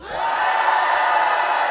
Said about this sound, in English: So the people shouted.